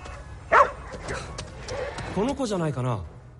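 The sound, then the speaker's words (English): A small Shiba Inu dog in a video game set in Tokyo lets out one sharp bark, followed a moment later by a quick run of higher, whiny yips at moderate volume. “So, Tokyo is crawling with these adorable little dogs, these Shiba Inus, and you can pet them.”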